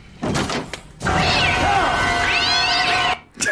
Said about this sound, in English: Wow. The cat's mouth was closed while the meowing was still going. Oh, yeah, I noticed that too.